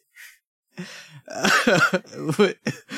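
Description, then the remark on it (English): A brief breathy puff, then an acid reflux burp rolling into rough, throaty bursts and coughs that rise and fall over a couple of seconds, fairly loud, with no talking. “Sorry, I had an acid reflex burp here.”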